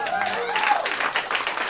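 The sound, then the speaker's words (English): Brief audience applause, a dense patter of clapping that swells and continues steadily, with voices talking over it at the start. “No, no applause.”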